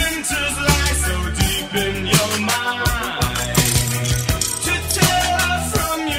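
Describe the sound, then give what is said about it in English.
Inside a full musical track, a sound effect meant to resemble glass breaking: a piece of ice drops into water several times, each a sharp, bright clink with a short splash, repeating in rhythm over steady bass and sustained instruments. “It's actually somebody dropping a piece of ice into water.”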